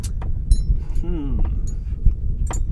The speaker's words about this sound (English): Let's do those chimes in the back. I know. Some ASMR there.